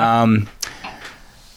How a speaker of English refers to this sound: That was a ghost. That was me knocking over a fan in this old building.